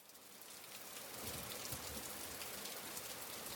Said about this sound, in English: It was early afternoon in Ubud, Bali, and that meant rain. More like a torrential downpour. at least for an hour or so. When they say it's wet season, they really mean it. It's wet, it's rainy, and it pours down hard.